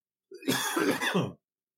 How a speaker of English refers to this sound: I'm about to cough and I can't pour this drink fast enough. Oh my God.